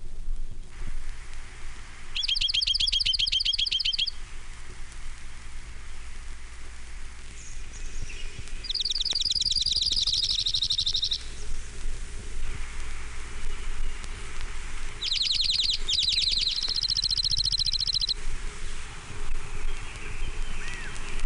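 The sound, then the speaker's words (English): A junco sings three dry, rapid trills, each lasting about two seconds, separated by pauses over a steady hissing background. The song sounds clear, with no voices. “Junko. Nine examples.”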